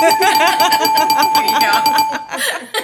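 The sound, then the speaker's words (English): A bell rings with a steady, sustained tone for about two seconds during a trivia game, mixed with bursts of laughter and chatter, then drops away as voices continue. “Give yourself a bell.”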